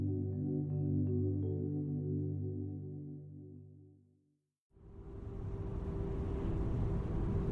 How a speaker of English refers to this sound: The car engine rumbles softly. It bumps gently, but rhythmically, over the nearly empty interstate as you pass through Owens Valley, a fertile but mostly dry part of Eastern California.